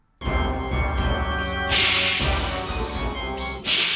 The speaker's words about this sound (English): he had to have one hand to keep the monocle in place, so he's only got one hand to bash the cymbals together